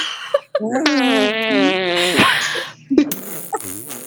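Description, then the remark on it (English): Several people blow mouth fart noises together, a loud buzzy raspberry lasting about two seconds that wobbles in pitch, ending in scattered laughter and a few short voiced bursts. “Let's just go out and fart noises, like, all of us at the same time.”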